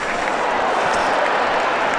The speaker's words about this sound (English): Last tackle. Groans from the crowd, thought that might have been a high one.